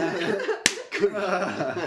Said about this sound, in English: Slap me in the face.